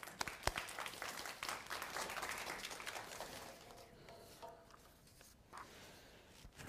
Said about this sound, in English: So please, let's welcome him with a round of applause.